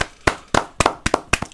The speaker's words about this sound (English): And thankfully, Liverpool has stopped City from getting that invincible title. So let's clap.